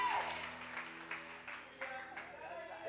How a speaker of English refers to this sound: Let's give a round of applause as you sit down.